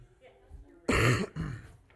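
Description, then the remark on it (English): A person coughs twice, two loud, rough bursts back to back with a brief gap between them, after a stretch of quiet background. “Does this have a mute button, James? When I need to cough, just turn it off.”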